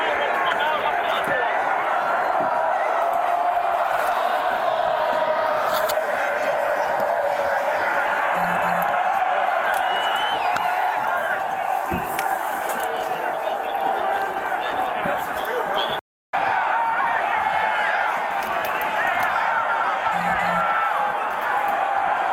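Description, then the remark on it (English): A large crowd shouts and roars continuously and loudly, a dense wall of voices, as canisters are fired into it, with an occasional sharp pop cutting through and one brief dropout near the end. “They're firing those canisters into the crowd right there.”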